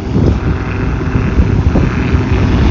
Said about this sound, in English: Chopper flying by.